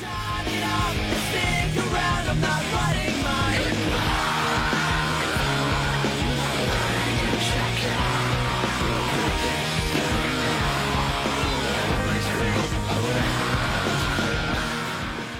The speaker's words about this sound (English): Because audio-wise, I can play you some bona fide screamo. Screaming in this song is definitely worth it. That's a perfect use of scream.